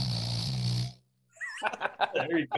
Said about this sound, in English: That you guys do, like the snoring shit. That's just a clip of you snoring. Oh yeah, it's on the soundboard.